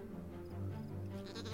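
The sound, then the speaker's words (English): A sheep bleats in a drawn-out, wavering cry that lasts over a second, steady in loudness, with no one talking, in a trailer for a PS4 game from Humble Games in which a character has lost a sheep. “This guy has lost a sheep.”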